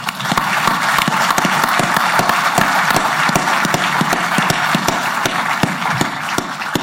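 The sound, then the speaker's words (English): Sustained applause from a sizable crowd welcoming a new New York Jets player, a dense wash of many hands clapping loudly and steadily for several seconds with no voices standing out. “I'd just like to have a round of applause right there.”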